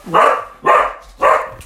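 A dog barks three times in a steady rhythm, each bark sharp and fairly loud, close by, with brief pauses between them and no talking.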